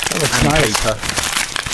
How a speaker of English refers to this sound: So what's this one now? So this one has been nicely wrapped up. That is. Bubble wrap.